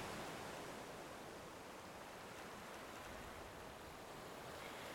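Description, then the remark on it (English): A steady, even wash of gentle ocean waves rolls on without pause at a sandy beach, a soft continuous hiss of water against the shore with no distinct breaking crashes and no voices. “You notice the sound of the gentle waves crashing on the beach.”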